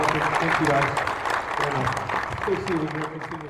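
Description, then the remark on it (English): A loud, sustained round of audience applause fills the whole stretch, dense clapping from a large crowd with voices and cheers rising through it, fading slightly near the end. “All right, big round of applause.”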